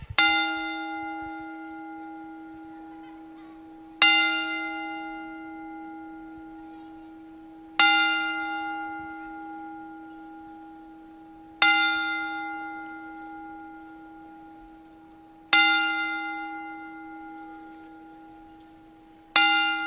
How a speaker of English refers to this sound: One of the greatest of all times. 10-bell salute for Harley Race.